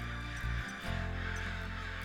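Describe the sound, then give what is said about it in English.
Crows caw agitatedly in harsh, overlapping bursts, loud, with a brief pause before the raucous calling resumes and carries on steadily. “Now, what's got into those crows? Are they mad at me or something?”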